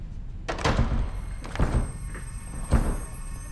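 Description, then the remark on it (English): A door is battered and broken, with three heavy, booming impacts spaced about a second apart, each followed by a brief rattle, with no voices. “you broke the door.”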